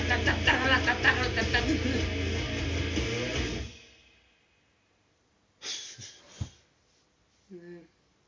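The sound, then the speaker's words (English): A washing machine drums out a steady rhythmic beat, a loud dense rumble with regular thumps for several seconds, then silence followed by a few brief, voice-like squawks. “I don't know how well you can hear this, but my washer is making a beat.”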